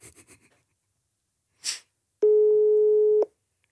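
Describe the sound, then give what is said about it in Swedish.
A single steady telephone ringback tone sounds for about a second, loud and clear, after a few soft taps and a brief rustling burst. No one speaks and nobody picks up. “Han svarade inte. KG svarade inte.”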